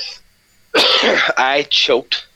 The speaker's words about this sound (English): I choked. It's kind of appropriate that I coughed there.